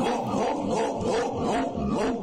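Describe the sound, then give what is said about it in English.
A dog snarls and barks in a continuous, agitated burst, loud, with rapid snapping yelps rising and falling over about two seconds, as it bites a man. “Then if he's yours, why does he bite you?”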